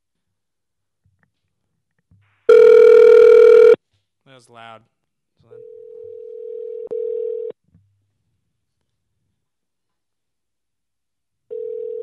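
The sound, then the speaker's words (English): A harsh, loud electronic tone bursts out, then an outgoing phone call to a fan rings back with steady ringing tones over speakerphone, one long ring and another starting later; a person briefly speaks between them. “I'm gonna call Steve right now on speakerphone”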